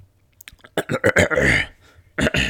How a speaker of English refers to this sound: I'm losing my mind. I had to clear my throat.